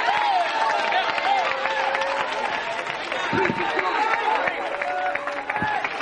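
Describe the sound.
An audience claps steadily, dense overlapping handclaps filling the whole stretch, with crowd voices and a few sung or called-out tones rising over the clapping.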